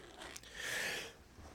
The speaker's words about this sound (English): Cough in the microphone, why don't you?